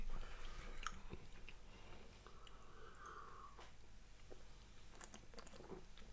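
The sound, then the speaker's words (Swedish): Quiet chewing of razor clam, a firm muscle with much more chewing resistance than mussels: soft wet squelches and small clicking bites repeating unevenly for several seconds, with faint breathing and no talking. “Och har ju mycket, absolut, mycket mer tuggmotstånd. Men det här är så gott”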